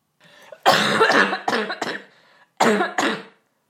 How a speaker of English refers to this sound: … just coughed with her finger in my face.